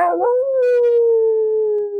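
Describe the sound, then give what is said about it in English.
A person imitates a wolf howl, one long sustained wavering tone that starts with a rising swoop and slowly glides downward, loud with no other sounds around it. “You hear some howling.”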